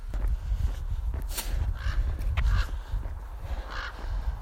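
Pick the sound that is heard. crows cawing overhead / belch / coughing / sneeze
crows cawing overhead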